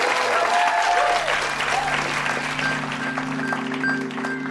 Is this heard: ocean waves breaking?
no